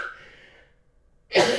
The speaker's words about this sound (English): Pardon me, y'all, with this coughing and stuff.